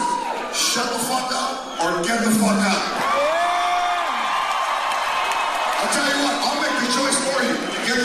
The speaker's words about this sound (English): And then they get up, and he says, "There's four seats up front now," and the whole crowd cheers.